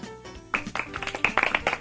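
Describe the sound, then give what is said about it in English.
A polite golf clap: a short run of light, scattered hand claps at an uneven pace, moderately soft, starting after a brief quieter moment with a faint tonal hum. “And on the polite golf clap note, we head out.”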